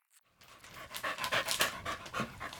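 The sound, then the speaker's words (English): A dog pants rapidly and sniffs, a steady series of quick breathy huffs with no one speaking. “So in 2019, HS2 actually funded research to see whether dogs could help out with this task by sniffing out the great crested newt.”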